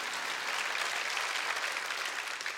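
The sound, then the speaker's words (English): An audience claps steadily for a few seconds during a sermon, after the words "Jesus is Lord", a dense, continuous wash of many hands with no single claps standing out and no voices on top. “If you're going to clap, clap and be happy about it.”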